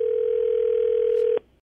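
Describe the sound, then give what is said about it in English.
The ringing tone of an outgoing prank phone call hums as one steady, mid-pitched note for well over a second, then cuts off abruptly with a click, leaving near silence. No one speaks. “Okay, so you have an idea that I'm going to call him and prank him and pretend that you hired a dog sitter so that he doesn't go on vacation with you guys.”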